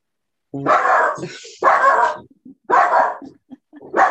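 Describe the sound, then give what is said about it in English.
A dog barks loudly at a UPS delivery, three or four harsh, drawn-out barks spaced about a second apart, with short yips and huffs in between and no talking. “It's the UPS. I'm so sorry. Doggy break number two.”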